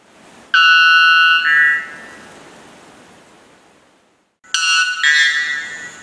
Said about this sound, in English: That's the sound the male white bellbird gives to attract a female. It also happens to be the loudest bird call ever recorded.